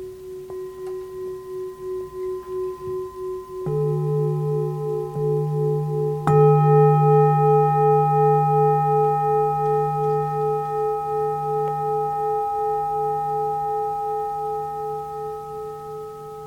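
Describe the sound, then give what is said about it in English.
Meditation bells struck three times in a row, each adding a new layer of pure, sustained tone that hums and wobbles as the overlapping rings slowly fade, with no voices present. “The sound of the bells,”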